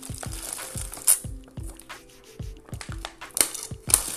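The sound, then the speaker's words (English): Someone drinks water from a plastic bottle that crinkles and crackles in quick, uneven bursts throughout, with a few sharper pops and no talking. “Let me get some water.”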